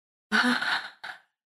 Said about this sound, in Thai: เราต้องการสูดลมหายใจเข้าให้ลึกค่ะแล้วเราต้องการแค่ระบายเสียงออกมา